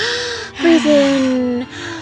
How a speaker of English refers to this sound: Yeah, so deep breathing.